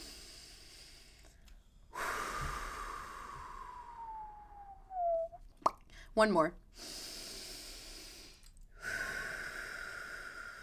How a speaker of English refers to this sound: Also, let's do our breaths right now, because I also have not breathed once since I started. So let's take a deep breath together. Ready?